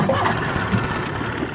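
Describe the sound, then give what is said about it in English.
The outboard motor of a 16-foot John boat runs at a steady idle in the dark in Arkansas, a continuous low rumble with faint water sounds beneath it and no voices. “We're in a 16-foot John boat with two black labs. Driving the boat is Jimbo Ronquest.”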